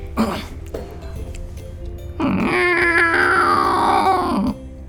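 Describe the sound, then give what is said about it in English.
A person voices a drawn-out, wavering meow, imitating a cat in an animal-sound guessing game. The cry is loud, with a brief vocal sound before it and no other talking. “Yes, it's a cat.”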